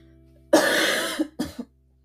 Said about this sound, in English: You know, this cough was like so satisfying. Like, oh, I have to cough and like feel in the back of your throat.